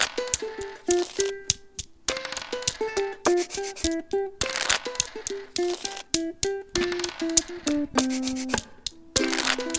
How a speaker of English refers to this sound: Dice rolls. Cards shuffle.